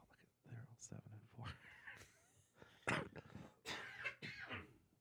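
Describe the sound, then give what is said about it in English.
A few harsh, loud coughs burst out in quick succession from a person fighting a head cold, mixed with throat-clearing and muffled vocal sounds. “So you may hear some coughing in this because I've been fighting a head cold”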